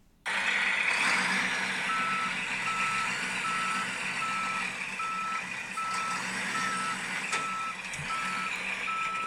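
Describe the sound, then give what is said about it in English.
A garbage truck's reversing alarm beeps in a steady, evenly spaced rhythm over the loud rumble of its idling engine, continuous throughout. “Alright, looks like the truck's here.”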